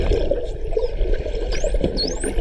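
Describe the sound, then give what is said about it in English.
Two thin, rising dolphin whistles sweep upward over a steady watery, bubbling underwater background, with scattered faint clicks; the calls are fairly quiet and brief. “Dolphin. No, that was the weakest dolphin.”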